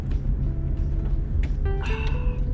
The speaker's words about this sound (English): You are riding in a 2005 Honda Civic EX with a 1.7 liter four-cylinder engine, this baby has been here and there.